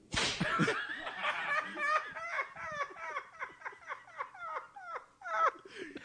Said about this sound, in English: The whip is never not great. It's good. It's good all the time. I like it because it doesn't quite derail. No. No. It adds. It's an additive.